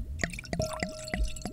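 Wine glugs from a bottle into a glass in about five quick, evenly spaced gurgles, clear, with a faint steady ringing tone underneath and no voices.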